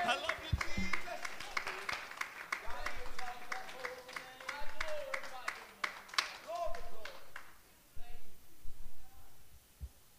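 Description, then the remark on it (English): A crowd claps along to magnify the Lord, sharp irregular hand claps filling the first seven seconds over voices and singing, then the clapping thins out and a few claps remain. “Why don't we clap our hands and magnify the Lord right now?”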